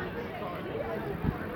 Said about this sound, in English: We can't go too near to this crowd, George. It's going to be too loud.